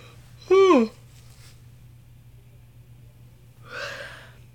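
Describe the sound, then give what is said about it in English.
A short voiced yawn with a falling pitch, fairly loud, followed a few seconds later by a soft breathy exhale over a low steady hum. “Longest yawn in history.”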